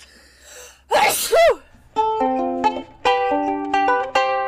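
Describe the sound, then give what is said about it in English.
One loud sneeze with a sharp voiced "choo" burst, followed a moment later by a bright, plinking musical jingle that plays on steadily. “Wait, I have to sneeze.”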